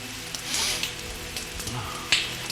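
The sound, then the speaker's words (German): Heavy rain pours steadily in a dense, hissing wash at a graveside, with scattered splashes and one sharper drip standing out near the end. No one speaks. “Der großgewachsene Mann im schwarzen Trenchcoat stand im strömenden Regen vor einem mit frischen Blumenkränzen geschmückten Grab.”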